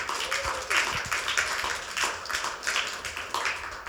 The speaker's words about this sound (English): Because with God, all things are possible. Come on, clap your hands.